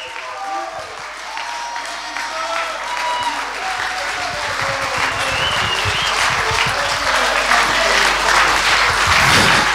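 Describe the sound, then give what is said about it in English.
A large crowd on its feet giving Jesus 30 seconds of praise claps and cheers enthusiastically. The dense applause builds steadily louder, with scattered shouts and voices rising over it. “Jump to your feet and give Jesus 30 seconds of crazy praise in this place.”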